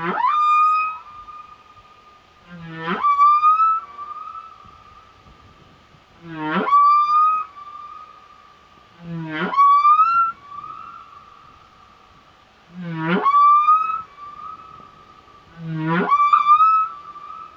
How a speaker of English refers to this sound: This whale was recorded by the International Fund for Animal Welfare for the British Library CD….